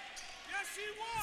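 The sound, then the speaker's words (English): A basketball bounces on a gym floor a few times after a missed free throw, soft, mixed in with echoing crowd chatter and indistinct voices. “That's a miss. Ball on the deck.”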